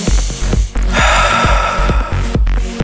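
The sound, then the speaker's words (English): A deep, airy breath is drawn in and slowly pushed back out, loud, as a deep-breathing exercise to relieve stress and anxiety, over a steady, rhythmic low thumping in the background. No one speaks. “Deep breathing.”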